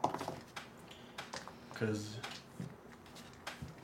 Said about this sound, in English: I dropped off my dice. If it hit the floor, it ain't good anymore.